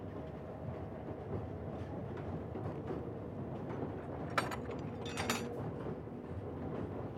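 A subway train at Coney Island, New York, at the terminal at Stillwell and Surf Avenue, rumbles steadily along the rails with a constant low roar, broken by two sharp metallic screeches or clanks partway through, with no voices heard.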